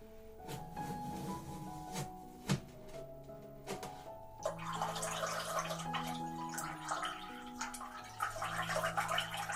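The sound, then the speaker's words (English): Water splashes and pours into a glass, with a few sharp clinks early on, then a steadier, fuller stream of pouring and trickling toward the end, as a glass of lemon and cucumber water is prepared. No one speaks. “Just a water. It's lemon and cucumber, okay? Alright, I'll just prepare it for you now.”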